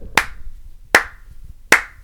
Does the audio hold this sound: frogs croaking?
no